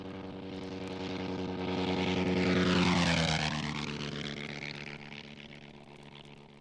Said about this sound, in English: One of their fighter planes was the Nieuport 28. Made in France, it had a 160-horsepower engine, a top speed of about 130 miles an hour, and was fitted with two 30-caliber machine guns. Listen now as a 1916 Nieuport flies by, its guns blazing.